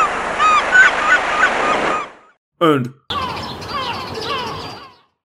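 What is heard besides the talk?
seagulls squawking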